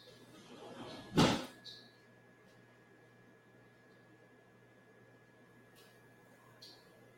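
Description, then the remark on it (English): A sliding door rolls open in one quick, rough burst, followed by a couple of faint squeaks and a soft closing bump against a steady low background hum. “Yes, you just did hear the slider door open and close.”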